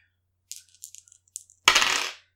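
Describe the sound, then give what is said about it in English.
Dice rolled for the damage of two longsword attacks in a game clatter across a hard table in a quick run of sharp clicks, followed by a louder, longer rattling burst as they tumble and settle, with no voices. “Dice don't fail me.”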